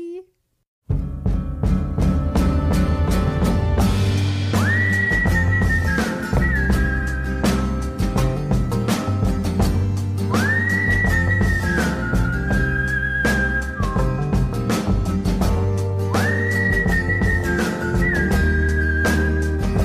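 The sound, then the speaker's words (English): Someone whistles a tune in clear, sliding phrases that recur every few seconds, riding over a loud, steady backing of full instrumental music. “I can never whistle like you.”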